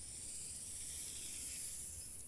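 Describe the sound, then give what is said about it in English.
A snake's long, steady hiss, a breathy airy sound held continuously for a couple of seconds with no pauses, heard on its own without any voices. “But one day, I was minding my own business, picking white and lavender flowers, when who slithers over but slimy Satan, disguised as a snake.”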